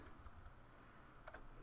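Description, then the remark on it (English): A few quiet computer keyboard keys are pressed to cycle through open windows on screen, a pair of sharp clicks close together near the end after some softer thumps, with no talking. “You can use either the Tab key to go through them, or to go back and forth, you can use the arrow keys on your keyboard.”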